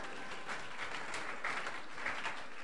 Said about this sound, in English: Oh, give me a clap.